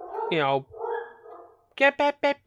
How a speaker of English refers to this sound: Anyway, a toast to the dogs that will never shut up.